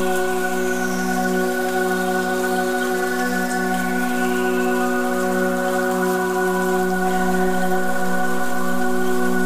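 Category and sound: nature, gentle summer rain falling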